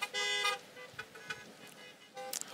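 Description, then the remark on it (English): Car horns honk in bursts: a long, loud blare at the start, a few fainter, scattered toots in the middle, then another sharp honk near the end. “Honk that up.”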